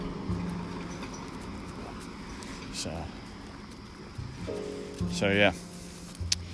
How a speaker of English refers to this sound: Our local PennDOT truck.